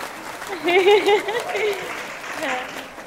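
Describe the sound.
An audience claps steadily for about three seconds, a dense patter of many hands, with a few voices whooping and cheering over it at the start and again near the end.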